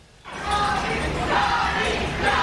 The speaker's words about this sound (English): Cheers of Johnny erupting outside the courtroom, while inside Amber Heard listened stoically as count after count went against her.